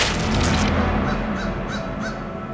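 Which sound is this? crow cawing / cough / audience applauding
crow cawing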